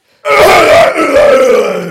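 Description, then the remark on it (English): A voice imitates a loud, drawn-out throat clearing, mimicking a man who repeatedly cleared his throat during a film at an IMAX cinema: a single rough, gravelly rasp that starts abruptly and holds steady for nearly two seconds, with a low grunting tone underneath. “And also, you know, the echo of the bloke clearing his throat every fucking 10 minutes.”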